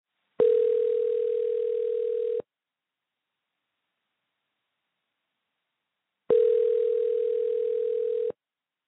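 A phone line rings out with two steady electronic ringback tones, each lasting about two seconds and separated by a long silent pause, heard clearly with no one speaking; a call being placed to someone in California.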